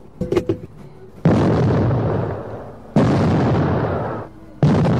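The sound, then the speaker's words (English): An arcade game, started after an arcade card is inserted, fires off a cluster of sharp pops, then three loud, roaring blasts in quick succession, each one sustained and abrupt, startling like a starting gunshot, with no talking. “Think of it like the gunshot at the top of a race. Pretty startling.”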